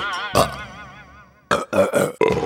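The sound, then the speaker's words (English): A loud, close burp rings out with a long, wavering tonal tail, followed by a quick series of three or four shorter, punchy belches. “So your body gets rid of it by sending it back up the way it came.”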